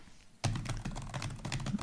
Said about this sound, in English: It's a lot of solid typing. It's thorough. He has calluses from this type of typing.